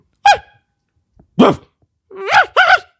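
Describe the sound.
A person imitates a dog with four loud barks: one sharp bark, a pause, another, then two quick barks in succession. No other talking.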